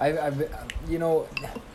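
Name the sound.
spoon clinking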